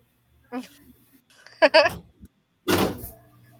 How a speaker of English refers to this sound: My son is walking in the door.